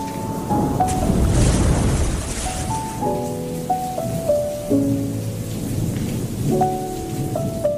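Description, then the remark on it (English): A thunderstorm with heavy rain surges loudly, a rolling rumble washing over a steady downpour, then eases back beneath a slow, sustained musical melody that carries on to the end. “My gosh, guys, can you believe that storm out there? That's insane.”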